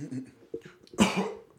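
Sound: cough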